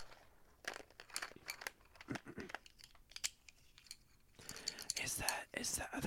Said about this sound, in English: Are those pencils? They're pencils, but like, I just have a bunch of colored pencils.